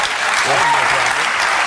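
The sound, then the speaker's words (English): Steady, dense studio audience applause fills the whole clip, a loud even wash of clapping with a faint voice briefly audible underneath. “I think that applause sign was up.”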